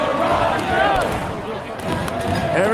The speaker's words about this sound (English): Everybody's banging on something here. You are listening to footage from just a little bit earlier this evening in the streets in Ottawa, Canada, with a big, big party going on here.